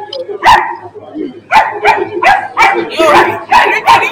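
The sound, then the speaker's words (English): A person imitates a chihuahua's yappy barking, with a run of sharp, high-pitched yips, one early and then a rapid burst of about seven, loud. “This bitch is really barking like a chihuahua.”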